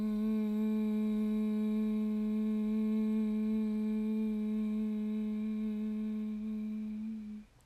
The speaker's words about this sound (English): Last time, big breath in. Humming breath out.